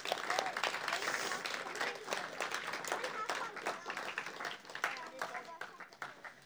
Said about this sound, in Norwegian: Da gir vi en klapp for skuespillerne.